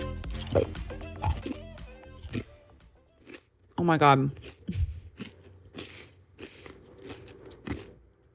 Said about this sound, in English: And let me tell you guys, these chips are incredible. I'm going to eat one. I'm going to give you guys a little chip ASMR just so you can hear the crunch.